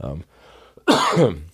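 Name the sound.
coughing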